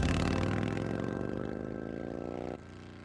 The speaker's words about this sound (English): So that almost brought a sense of excitement, the sound of a motorcycle, knowing that I might possibly see my dad. And I remember, you know, if I heard a motorcycle or if one drove by, I always looked for my father.